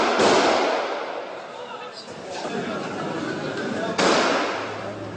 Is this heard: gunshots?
yes